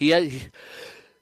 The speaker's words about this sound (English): God bless you